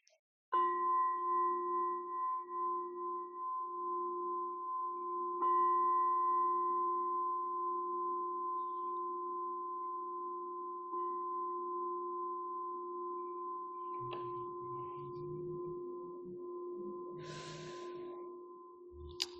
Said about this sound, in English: And can you ring the bell 3 times?